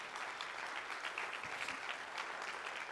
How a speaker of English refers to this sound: All right. All right, so to you who just clapped, you are truly my disciples if you remain faithful to my teachings, and you will know the truth, and the truth will set you free.